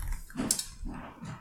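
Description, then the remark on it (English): Cats fighting: a few short, harsh bursts of growling and yowling, with a sharp hiss in the middle, repeating in quick uneven succession at a moderate level. “My cats are fighting.”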